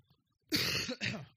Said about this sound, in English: I will be coughing a little bit today